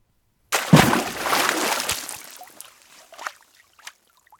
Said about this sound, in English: Is it a pebble thrown in the water or a pebble thrown in the sand? We can hear the noise of a pebble thrown in the water.